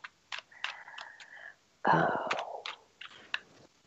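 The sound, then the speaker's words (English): Shuffling of tarot cards for a mini spread about health: scattered soft clicks and taps, then a louder, brief riffling burst midway, followed by a few more light card snaps. “So when we think about health, I'm shuffling here because we're going to do like a mini spread here.”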